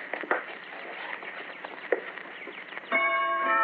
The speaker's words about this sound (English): The chimes and everything.